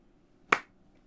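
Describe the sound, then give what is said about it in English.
A single hand clap, short and crisp, rings out once and fades almost immediately, with no voices around it. “That was a clap?”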